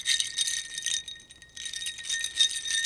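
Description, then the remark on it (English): Beads rattled to imitate ice clinking in a water glass: a bright, busy high-pitched clatter with a faint ringing tone, dipping quieter for a moment midway before resuming. “This is ice in a water glass, and this is what it sounds like.”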